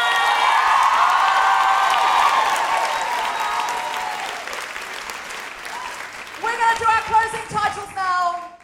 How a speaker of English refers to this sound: Massive round of applause for Deborah Francis.